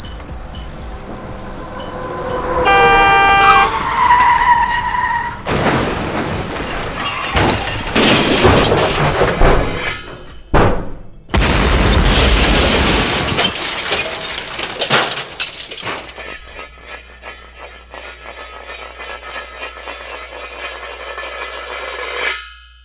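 A rising motorbike engine whine, as a robot on a motorbike gives chase into traffic, gives way to loud rushing traffic and a violent crash with shattering glass, then a second noisy surge and a ringing, rattling aftermath fading out. No voices.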